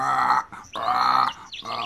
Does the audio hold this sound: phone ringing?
no